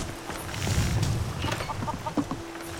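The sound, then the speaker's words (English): Chickens in Riften cluck in a quick series of short, clipped calls, moderately loud, over a steady low background rumble with a faint sustained hum. “I hear chickens.”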